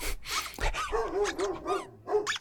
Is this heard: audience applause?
no